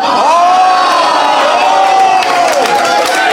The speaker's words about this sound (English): Skylights gets a cheer! I win!